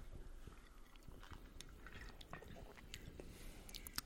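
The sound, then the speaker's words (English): Quiet sipping of a canned Arizona tequila cocktail, with soft wet mouth clicks, small slurps and swallowing sounds scattered over about four seconds, and no talking. “But yeah, let's have a sip.”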